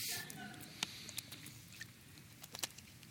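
Someone takes a sip of water: faint, scattered wet clicks and soft squishy mouth and swallowing sounds over a low hum, with no talking.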